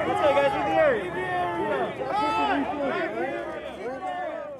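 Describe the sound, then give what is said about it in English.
A crowd of protesters yells and shouts at police over one another during a nighttime police crackdown around a park, many overlapping voices rising and falling in pitch, loud and unbroken for the whole stretch. “Throughout that night and into the next night, protesters refused to disperse. Some shined strobe lights and yelled at the police.”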